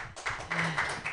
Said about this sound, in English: All right, thank you so much. Clap it up.